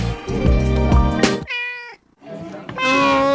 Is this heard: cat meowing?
yes